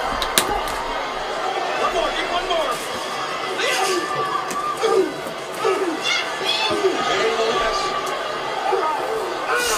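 A woman's shrill screeching cuts in and out above a loud, dense wrestling arena crowd that roars, shouts and cheers without pause for the whole stretch.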